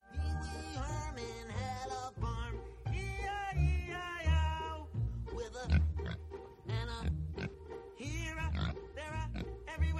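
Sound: pig oinking and grunting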